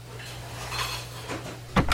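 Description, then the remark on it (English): Quiet kitchen clatter of dishes and utensils as people chop and dice, over a steady low hum, ending in a sharper, louder clunk, like a knife or plate striking a counter. No one speaks. “Hey, everybody, stop your chopping and dicing.”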